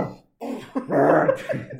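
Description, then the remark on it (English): A person mimics a dog's bark with a few rough, throaty vocal bursts in quick succession, fairly loud, with no words spoken. “Just start barking.”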